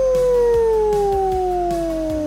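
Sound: wolf howling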